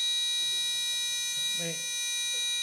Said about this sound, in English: this the buzzer went off in my life. And there's times when the buzzer goes off in our life, but we ignore it. This would be hard to ignore.